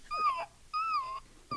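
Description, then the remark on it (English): A person imitates a new puppy's whimpering with high, thin, quavering whines: two drawn-out cries in a row, then a third that cuts off abruptly. It's fairly clear, with no talking. “You sound just like a new puppy when you do that.”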